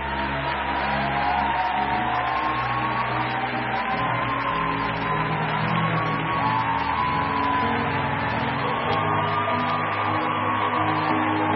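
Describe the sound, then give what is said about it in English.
An audience claps continuously, a dense, steady wash of applause that never lets up, with sustained musical tones humming underneath throughout. “Keep clapping till they go down.”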